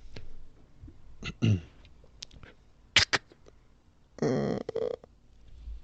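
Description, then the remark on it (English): A person imitates a creaking door opening with their mouth: short clicky, squeaky bursts, then a longer rasping creak near the end, fairly quiet. “He actually showed, he was doing an interview, he showed how to do the noise of a door opening and creaking open.”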